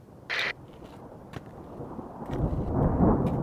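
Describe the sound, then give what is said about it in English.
A low, distant rumble of thunder from an approaching storm swells up over the last second or so, deep and growing louder, after a brief higher-pitched burst near the start against faint outdoor background noise. “Oh, you hear that? Glad to be gone before the storm comes in.”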